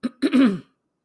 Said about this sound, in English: Excuse me. Yes, I'm still clearing my throat.